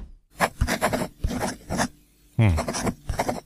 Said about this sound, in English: Yes, we heard that from your pen scratching.